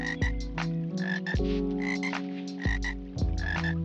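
A chorus of frogs croaks steadily, with deep, resonant croaks recurring every second or so over a dense layer of higher chirping calls. The sound is continuous, with no voices.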